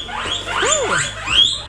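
High-pitched guinea pig squeaks and chirps, several rising and falling whistling calls overlapping in quick succession, fairly loud with a sharp upward squeal near the end.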